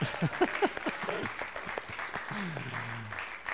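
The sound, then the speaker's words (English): A crowd at an NCR meeting breaks into steady applause for a speaker's sobriety, many hands clapping in a dense, even patter, with a few voices calling out over it and a low hum underneath. “We clap for each other in the NCR because we need it.”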